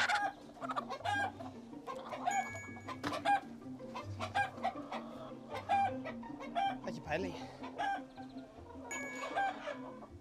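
Several chickens cluck and squawk continuously in a henhouse, with overlapping short calls and bursts of agitated noise, fairly loud throughout.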